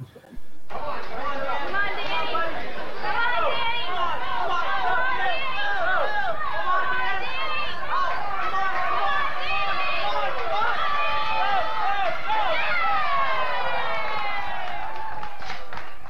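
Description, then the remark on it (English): Loud, steady crowd chatter at a pedal tractor pull in Bowling Green in 1991, many voices overlapping at once, a dense babble of talk and raised voices filling the whole stretch without a break. “Yeah, that had to be at Bowling Green, the pedal pull.”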